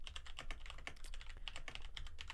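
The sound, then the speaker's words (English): Rapid, continuous clacking of keys on a computer keyboard as someone types a tweet, a dense irregular patter of sharp clicks, with no voices. “You're typing a lot.”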